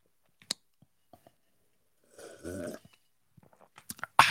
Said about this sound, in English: Ooh, that did feel like the sip of the day.